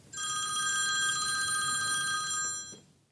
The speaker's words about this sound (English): Later that day, my phone rang.